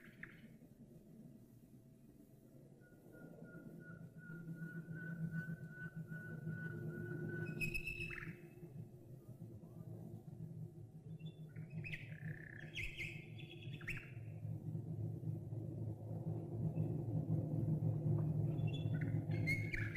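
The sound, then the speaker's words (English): A deep, continuous drone of a squadron of World War II bomber aircraft heading off to Germany passes overhead, swelling steadily louder, while a nightingale sings clear whistles and chirps above it. “Squadron glory of bombers heading off to Germany.”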